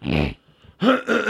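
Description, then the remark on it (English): A man clears his throat: a low, voiced grunt, a short pause, then two harsh, raspy bursts of hacking. Loud and alone, with no speech. “Ugh, clearing my throat now.”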